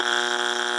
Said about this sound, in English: Hey, I was just glad I didn't get any buzzers for wrong answers. I could do that. I don't know what it would be. Wrong answer.